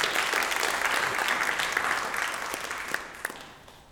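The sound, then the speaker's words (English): An audience claps together for the Lord in sustained, dense applause, many hands overlapping into a steady wash that gradually thins and fades, with a few sharper individual claps near the end. “Give the Lord a hand clap for his love.”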